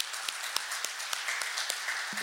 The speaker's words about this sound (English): If you are a Student Life volunteer this year, would you be willing to stand up and we could just clap for you? Are there any in here? One, two, three, four. Yep. Let's give them a hand.